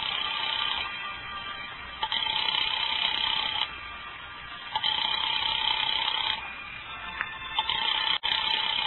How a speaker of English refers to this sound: There's no answer. Shall I keep ringing, sir? Why doesn't he answer?